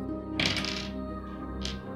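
dice being rolled

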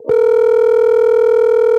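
telephone tone

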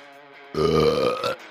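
burp

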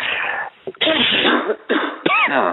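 people coughing

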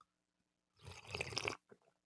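sipping coffee

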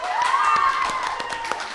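audience applause

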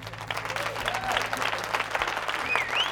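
applause sound effect

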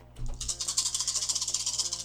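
dice being rolled

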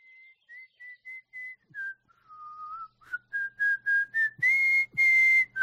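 person whistling

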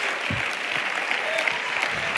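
audience clapping hands

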